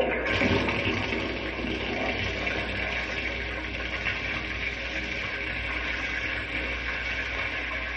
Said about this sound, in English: Now I'll turn on the water so it can run through the pipes over the model. Watch the topsoil wash away.